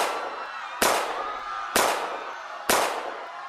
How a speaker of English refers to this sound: Did I hear a gunshot?